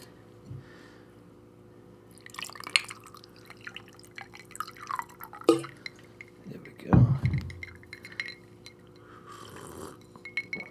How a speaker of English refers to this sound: This is actually a glass of water, but I thought I would set the mood for today's podcast by pouring a drink.